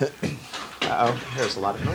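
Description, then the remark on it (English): A mail slot flap in a door clatters as an envelope is pushed through, with a few scraping, rattling bursts over about two seconds, while voices murmur underneath. “It's just an envelope being stuffed through the door, the slot in the door.”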